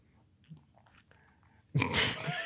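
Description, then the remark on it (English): Someone chews a crunchy Malteser chocolate malt ball: faint mouth clicks at first, then a loud, sustained burst of crunching. “Just having a couple bites.”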